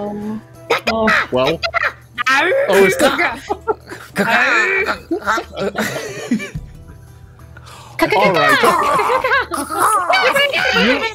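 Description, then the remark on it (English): A person imitates a bird call as a signal, with wavering, warbling vocal hoots in several bursts, fairly loud, while other voices laugh and chatter around it. “lets loose the bird call that we all know that is the signal.”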